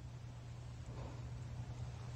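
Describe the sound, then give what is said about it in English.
A phone vibrates with a low, steady buzz that hums continuously for a couple of seconds, quiet, with no voices, confirming it recognized speech dictated into a note. “So it vibrates to let me know that it recognized what I was saying, and then I press the OK button and it inputs the text and reads it back to me.”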